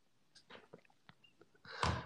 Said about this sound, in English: But it's time for the simultaneous sip. Go.